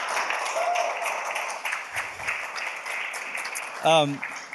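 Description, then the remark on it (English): A church audience claps steadily in a dense, continuous patter for a member newly licensed for pastoral ministry, with a brief high-pitched whoop or cheer near the end and some murmuring voices mixed in. “You can clap. It's okay.”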